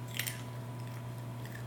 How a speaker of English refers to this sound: And what snack do you have today? It's not broccoli. Carrots. Carrots, yes. That's a good snack, huh? It's crunchy.